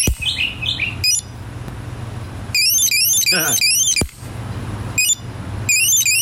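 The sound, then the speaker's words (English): A shrill electronic alarm on a small anti-theft device warbles in rapid, high-pitched bursts while a hammer strikes the device with several sharp, hard blows to silence it. The alarm sputters and cuts in and out between hits over a low hum. “You're listening to the death of an anti-theft device with a hammer.”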